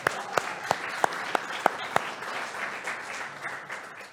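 A crowd breaks into applause, a few sharp, evenly spaced claps standing out at first before settling into a steady, moderately distant wash of clapping.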